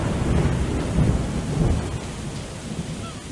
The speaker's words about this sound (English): This is like the worst storm since I've been down here, and I've been down here pretty much all winter.